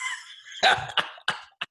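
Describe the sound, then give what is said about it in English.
A dog gives a short high whine, then four sharp, raspy cough-like hacks at uneven intervals, moderately loud, with no one talking. “that's Sherry's dog, just in case you're wondering if she's got a bad cough, that's not”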